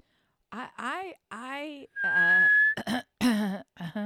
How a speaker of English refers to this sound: Do you mean the whistle with the fingers in your mouth, right? Now I just mean whistling, period.